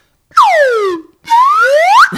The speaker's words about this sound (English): That's right. We got ourselves a little slide whistle.